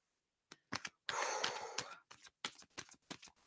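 A deck of tarot cards being shuffled: a few crisp flicks, then a long papery riffling swish, followed by a run of quick, sharp card snaps and taps, with no talking.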